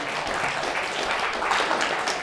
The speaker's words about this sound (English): Great job. Give him a hand clap for that, you know.